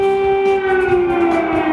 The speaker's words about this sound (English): Raid sirens blaring across Ukraine for the second day in a row as Russia steps up its most aggressive attacks since the early days of the invasion.